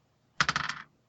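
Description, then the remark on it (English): A die rolled by a kid clatters across a hard tabletop, a quick burst of about half a dozen sharp clicks over half a second that tapers off as it settles, landing on 5. No voices. “All right, roll this dice and tell us what the roll is, kid.”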